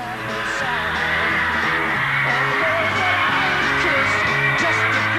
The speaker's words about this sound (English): You know, like you see Hard Day's Night, and there's all these girls screaming.